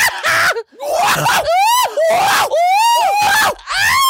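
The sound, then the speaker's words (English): A voice imitates a chimpanzee, letting out a rapid series of loud, shrill, rising and falling shrieks with brief breathy gaps, unaccompanied by other sounds, copying how a man shrieks when he is amused. “when his fancy is tickled, he shrieks and like and he does that. It's like a chimpanzee.”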